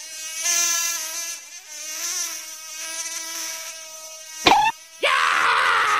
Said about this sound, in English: Yeah! Ouch, man! What is with the bees? When God created bees, man, what was he, like flying syringes?